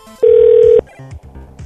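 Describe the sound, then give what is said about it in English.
A loud, steady electronic telephone tone holds for about half a second, followed by softer, broken phone-line sounds, as if a call is being placed and connecting. “Phone number. Here we go.”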